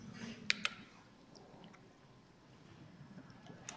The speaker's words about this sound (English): Taking a little sip of water, mouth getting dry.